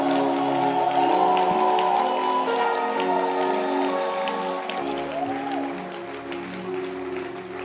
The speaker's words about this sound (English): Clap your hands and let's celebrate our pastor, our father, Bishop Doug Ewart Mills.